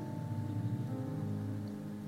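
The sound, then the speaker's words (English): Rain falls steadily outside, a soft continuous patter and hiss that holds the same level throughout, layered over a low steady hum, with no one talking. “I can hear the raindrops behind me.”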